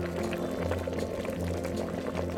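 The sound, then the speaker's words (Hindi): Water with jaggery, turmeric, cloves, black pepper, carom seeds, ginger and tulsi leaves bubbling steadily in a pan on a gas stove over medium heat to make a herbal kadha, a dense stream of small pops and gurgles over a low, continuous hum, moderately loud with no talking. “इन सभी चीजों को मध्यम आंच पर उबलने दीजिए।”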